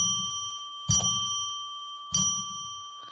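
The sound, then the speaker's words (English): A small bell is struck three times at an unhurried pace to declare sacred space, each ring leaving a clear, sustained metallic tone that hangs in the air until the next strike. No one speaks. “So let's ring a bell three times to declare sacred space, which means no more babbling, and take a look at what's in the cards.”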